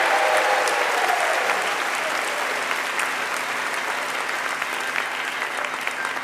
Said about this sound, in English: If we could, one more round of applause for all our contestants tonight, please. Great job, guys.